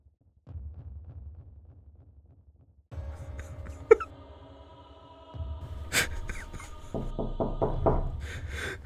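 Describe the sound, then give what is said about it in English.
Muffled, rhythmic thudding gives way to a quick run of loud, heavy knocks on a door near the end, over a steady background hum with no voices. “Open up the fucking door!”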